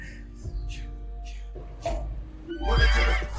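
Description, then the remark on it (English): A horse whinnies loudly, a long shrill, quavering neigh that swells toward the end, over a steady low rumble of background music. “Took that horse power. Oh, yeah. Giddy up, giddy up.”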